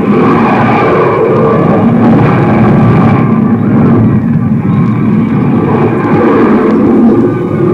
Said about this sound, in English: Your attention, please. The ship from Mars and its escorts will be seen any moment from the east. You heard that. Any moment, a ship from Mars and... What? There they are! They're coming in! The landing rocket ship first!